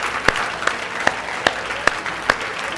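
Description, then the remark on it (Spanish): An audience breaks into steady applause after a prayer for healing in the name of Jesus, a dense wash of clapping marked by about six sharp, evenly spaced louder claps, as if many hands fall into a shared rhythm. “Dale un aplauso.”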